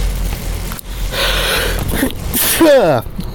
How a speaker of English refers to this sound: Excuse me, I sneezed.